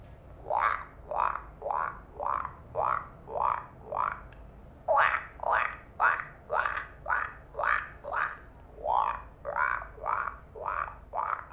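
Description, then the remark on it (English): Mating frogs croak loudly in a steady, rapid series of raspy calls, roughly two per second, with brief pauses between three runs and no voices. “Oh, my God! The frogs are fucking!”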